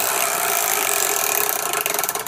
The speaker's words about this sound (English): We got to get the chore wheel going. DJ Dylan, can you fire that baby up, please?